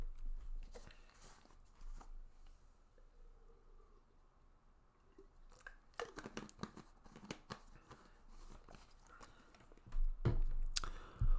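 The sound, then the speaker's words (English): Someone sips a drink of water: soft slurping and swallowing with a few clicky mouth noises and faint crinkling, quiet at first and busier toward the end, with no talking. “And so, before we start on time, I am going to take a sip of water, because we're coming up on almost 2 hours, and my throat is parched.”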